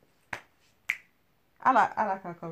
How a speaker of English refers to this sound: Why did you clap quick? Is that for my vulnerability?